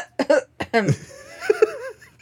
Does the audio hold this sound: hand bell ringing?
no